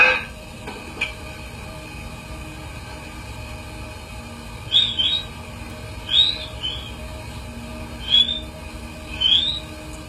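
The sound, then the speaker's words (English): Brief rising whistles come in a loose series of four or five short bursts, a second or two apart, over a constant low hum and hiss like an old tape playback. No one speaks. “You'll hear here the whistling, first of all, and then the barking.”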